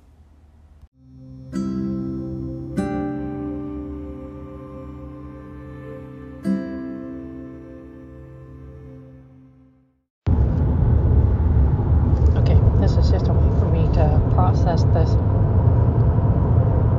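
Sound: car interior noise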